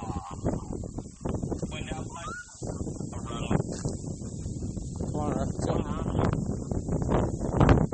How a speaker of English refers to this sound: Man, the wind. It's going to be so loud once we post this. You know, I think the primary amount of noise in this video is going to be wind.